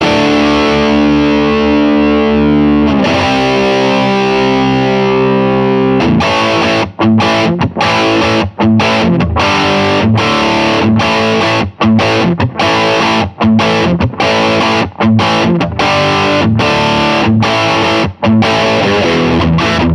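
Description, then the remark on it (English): A loud, heavily distorted electric guitar riff played live with a band before a concert crowd: a few seconds of sustained, buzzing chords, then choppy rhythmic stabs broken by short silences. No voices. “With a quick nod to the band, he launched into a riff that brought the crowd to its feet.”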